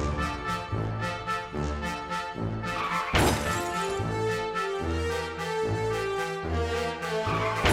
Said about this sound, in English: Yeah, the videos I've seen of car crashes.